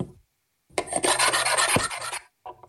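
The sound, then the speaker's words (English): A harsh, rasping scrape of a metal ruler dragged across a table for about a second and a half, loud, followed by a brief softer scratch after a short pause. “What is me with a metal ruler scratching it on a table?”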